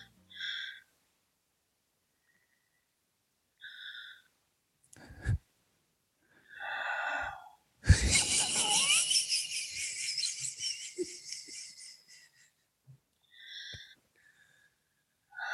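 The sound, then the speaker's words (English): A person fakes crying as if watching a movie, with sharp, gasping inhales and shaky, sobbing breaths, building to a long, noisy wail of hyperventilating before trailing off into sniffles and a few more quick gasps. “Can we just listen to like 15 seconds of you crying? But as truthfully as possible, watching a movie.”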